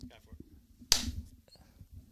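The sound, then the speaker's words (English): A single sharp hand clap, made to sync three cameras, rings out loud and bright amid low murmuring voices, its crack trailing off briefly before the chatter continues. “Yeah, so now your clap is even more important.”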